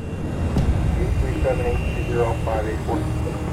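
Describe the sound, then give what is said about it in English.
A steady, low engine rumble of an airplane idling on the tarmac fills the whole stretch, with faint muffled voices drifting over the drone partway through. “One day in the 1980s, an airplane sat idling on a tarmac.”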